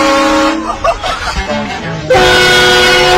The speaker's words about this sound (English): These train horns for vehicles. Yeah. We got to put this on the Jeep. Let's put this on the Jeep. This scares people to death. Listen to this. You go down the road, you're in your vehicle, and you've had this installed in your car.